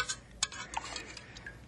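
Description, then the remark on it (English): A hypodermic needle is fished out of a pot of boiling water: light metallic clinks and scrapes, several irregular taps, quiet and brief, with no talking. “Fish that hypodermic needle out of that boiling water for me and be quick about it.”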